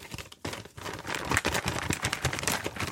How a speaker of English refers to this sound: Does that make it sound really cool? I'm ripping this paper into shreds. Right? Does that probably, you don't care. Obviously, it's not paper.